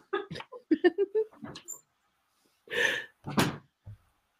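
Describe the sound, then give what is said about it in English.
A dog plays noisily, letting out a quick run of short squeaky yips and grunts, then two louder, rougher huffing bursts after a brief pause. “Your dog's having fun.”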